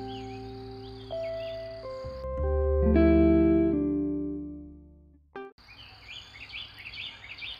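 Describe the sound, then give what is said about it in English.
Small birds chirp and twitter steadily in the background in the early morning in Tennessee at the start and end, while sustained, humming musical tones swell and fade through the middle. “So even though I can hear some cars on the highway nearby, the birdsong has reminded me to be full of joy.”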